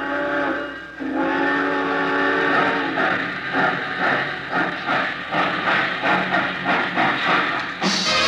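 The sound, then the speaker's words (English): A loud, sustained steam train whistle sounds as passengers board the Chief to Chicago, then gives way to the rhythmic chugging and clatter of the locomotive pulling away, with no one speaking. “All passengers taking the Chief to Chicago, please walk on tiptoes as you board the train.”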